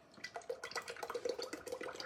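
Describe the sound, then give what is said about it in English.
Heavy whipping cream pours and glugs steadily into one side of a hollow ice cream ball, with bubbly splashing and dripping sounds, fairly quiet, and no one speaking. “First, on one side of the ball, we're gonna pour our ice cream ingredients.”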